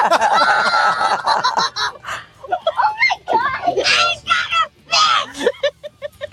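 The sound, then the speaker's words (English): A young boy yells excitedly after reeling in his first fish, a largemouth bass, on a lake in Maine: loud, high-pitched, breathless bursts with squeals and short gasps between shouts that carry on throughout. “By the way, the yelling goes on forever.”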